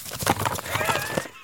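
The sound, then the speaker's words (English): Pieces of paper holding listener questions being crinkled, a dense run of dry, crackling rustles and sharp irregular pops that keep going steadily for a second and a half with no voices over it. “Crinkle it for the people.”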